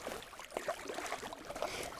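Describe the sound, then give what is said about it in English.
Water sloshes and splashes around a small boat as it is turned, a steady churning wash with a few brief louder splashes and no voices. “I'm going to turn the boat over you. I'm going to turn it.”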